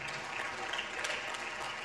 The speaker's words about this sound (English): Everybody clapping.